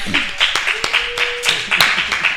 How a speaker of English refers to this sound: We can applaud for them.